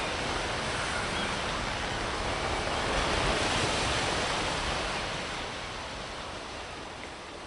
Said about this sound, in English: Lightning streaks across the steadily darkening sky over the silhouette of the Bras Perdu as the shadow of a rowboat bobs towards it through choppy waters.